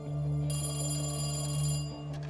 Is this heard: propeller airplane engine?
no